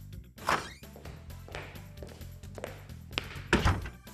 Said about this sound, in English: Oh, a man is opening a door, walking into a room, and then closing the door. Exactly.